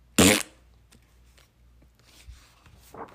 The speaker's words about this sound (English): Actually, the elephant's gigantic belly had been hurting a little, so he looked at the hippo and let out a giant fart of his own that sounded like a clap of thunder.